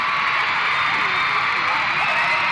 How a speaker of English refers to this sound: I went to see them at Birmingham LG Arena, 14,000 screaming girls. Let me see if I can give you a taste of what it was like.